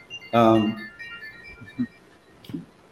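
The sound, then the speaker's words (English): A smartwatch alert sounds: a short burst of bright electronic tones that rings out for about a second, followed by a few faint, brief voice-like sounds. “it's the watch, sorry. These days you have to say, is it the watch? Is it the phone?”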